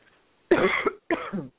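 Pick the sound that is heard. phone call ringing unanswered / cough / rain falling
cough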